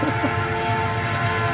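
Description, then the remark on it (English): A train rolling sound effect, played to bring on Sebi Zavala of the Chicago White Sox organization: a steady, continuous mechanical rumble with low droning tones underneath, holding an even loudness throughout without any pauses or talking. “Yeah, that's the Sebi Zavala train rolling.”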